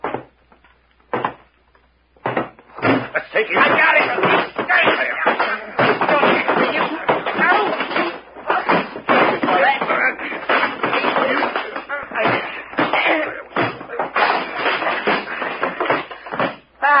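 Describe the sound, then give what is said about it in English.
A chaotic, sustained scuffle of thuds, knocks and shuffling bodies, loud, with grunts and scattered voices mixed into the rough-and-tumble commotion of a fistfight. “Gee, that was a fight.”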